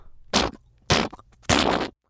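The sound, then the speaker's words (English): Three loud, rasping fart sound effects, each a short noisy blast about half a second apart, prominent with nothing else around them; a character in a children's story farting at a park seesaw. “Nelson let out a loud, stinky fart.”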